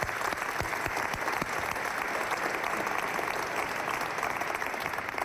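An audience applauds steadily for about five seconds, a dense, even wash of many hands clapping at constant loudness with no voices standing out.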